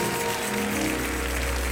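An audience claps steadily, a dense wash of many hands at an even loudness, with sustained low musical tones humming underneath throughout.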